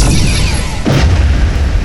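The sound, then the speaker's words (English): Spaceship weapons fire at a trader ship's engines in a steady noisy wash with a few descending zaps, then a sudden explosion bursts out and settles into a heavy, low rumble. No one speaks. “Power the weapons. Target their engines. Yes, sir. Fire.”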